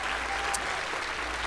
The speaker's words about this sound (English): Real quick, if you were at Royal Family Kids Camp, will you wave your hands? Let's just applaud. Just amazing group of people.